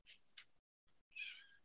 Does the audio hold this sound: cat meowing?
yes